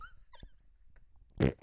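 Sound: person imitating a dog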